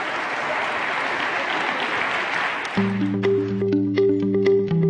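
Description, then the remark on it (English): A crowd applauds steadily for about three seconds, a dense wash of clapping, as performers come up to close with a song. Then sustained musical notes begin and the clapping thins to scattered claps beneath the music. “Let's give these guys one last round of applause.”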